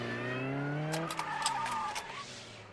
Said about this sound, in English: So that fast-paced car chase that puts us on the edge of our seats is really more like a slow, boring slideshow or PowerPoint for a pigeon.